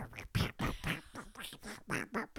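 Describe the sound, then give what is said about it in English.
A voice imitates squishy wet clay with a quick run of about nine nasal, squelching bursts, fairly loud, with no other sounds around it. “we're hearing this. That's, like, that clay squishy sounds.”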